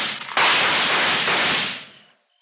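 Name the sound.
gunshots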